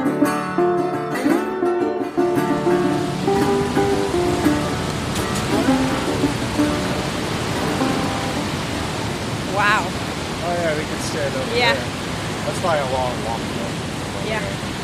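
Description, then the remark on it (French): A constant, loud roar of rushing river water at Niagara Falls, on the American side in Niagara Falls State Park, fills the whole clip, with several voices talking and calling out over the steady wash of noise. “Tu vois la rivière là? Chou! Elle tombe, il y a un trou.”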